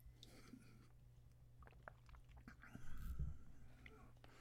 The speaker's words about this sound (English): Sip. This is water with a lot of lime juice in it.